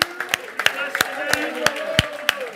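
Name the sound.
audience clapping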